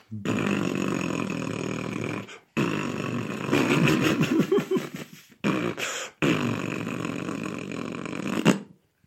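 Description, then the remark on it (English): Three long, raspy fart noises blare, separated by brief pauses, with the middle blast breaking into a sputtering, bubbly flutter before trailing off; farts of Madame Blavatsky as she sails the astral waves. “With this episode, Madame Blavatsky sailed the astral waves once more, farting as she went.”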